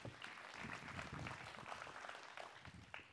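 An audience claps together for a man as he is being seated this morning, a dense, steady wash of many hands that holds at an even, fairly loud level for a few seconds with a faint murmur of voices mixed in.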